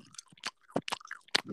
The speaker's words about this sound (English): Obviously, we did the very annoying chewing gum in microphone really loudly.